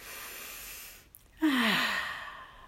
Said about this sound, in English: And just breathing in through your nose and out through your mouth.